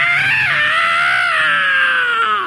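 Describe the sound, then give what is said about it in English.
A voice imitates the terrified scream of a young child who forgot how to brake a bicycle while riding down a street: one sustained, high-pitched shriek held for over two seconds, loud, with a slight wavering pitch that slowly falls before cutting off. “It was a scream of terror as Nathan forgot how to stop the bicycle”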